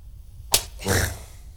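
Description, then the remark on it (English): A single sharp back-handed slap to the face, delivered with the back of the right hand, cracks out of near silence, followed a moment later by a brief breathy rush of noise that swells and fades. “Come on, do it properly with the back of the right hand.”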